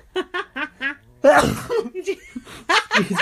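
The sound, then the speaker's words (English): A loud, sudden sneeze bursts out, preceded by a few short breathy intakes and followed by brief voices talking. “I'm going to sneeze.”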